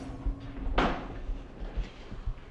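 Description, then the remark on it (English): A door closes with a single sharp thud as Alvarez goes through the door in a scene, a brief bright burst that fades quickly, followed by faint low rumbling and soft scattered knocks. “I do want to say that Alvarez kind of killed that before he went through the door in this scene.”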